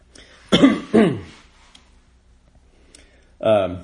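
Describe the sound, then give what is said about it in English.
Two quick, raspy throat-clearing coughs in rapid succession from a person who breathed in a lot of pollen and sawdust the day before, followed by a stretch of near silence and then a short burst of voice. “sorry, I sucked down a lot of pollen and sawdust yesterday, so clearing my throat a bit today.”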